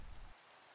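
Steady rain hisses across the whole clip, with a deeper rumbling layer underneath for the first third that then drops away, leaving a softer, even patter. No one speaks.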